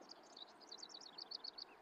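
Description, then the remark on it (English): Rapid, bright bird chirps from a video game repeat in a quick, steady series over a soft background hum, with no one speaking; the tweets are clear but modest in volume. “I thought those were real-life birds. Those are in the video game birds.”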